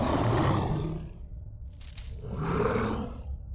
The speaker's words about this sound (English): It couldn't understand me, so there I was, in the middle of the East Ridge Forest Preserve, late at night, with a big wolf in front of me, snarling. Growling.